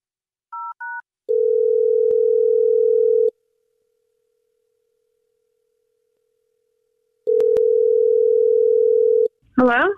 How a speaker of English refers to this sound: We're about to dial her phone number right now.